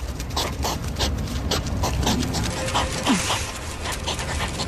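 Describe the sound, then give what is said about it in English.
A steady stream of rapid huffing, snorting and puffing from hedgehogs mating, rough and breathy, with short repeated bursts over a constant noisy background and no talking. “Hedgehogs having sex.”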